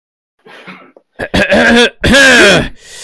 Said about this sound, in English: I actually needed to cough. I wasn't doing like the introductory reading cough. I know you were doing it to be a dickhead. I was doing it to do the introductory cough.